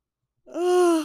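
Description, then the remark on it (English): A single drawn-out yawn, voiced and slightly falling in pitch, rising from silence after a breathy start. It is fairly loud, with no talking around it. “I yawned again.”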